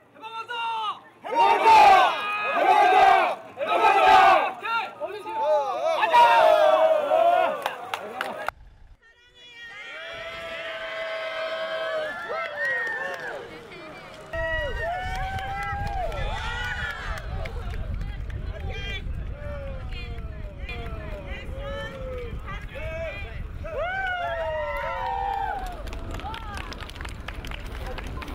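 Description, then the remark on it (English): A crowd of people launching balloons toward North Korea, recorded in 2012, shouts and cheers loudly in excited bursts with every launch, followed by sustained overlapping voices calling out over a steady low rumble, like wind or an engine, in the background. “You can really hear the excitement from the people launching the balloons. They loudly cheer with every launch.”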